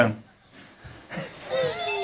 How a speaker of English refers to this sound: You get the phone.